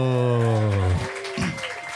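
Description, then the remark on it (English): An audience claps steadily throughout, a dense wash of applause under a sustained musical tone that gives way to a couple of brief vocal sounds. “We can clap”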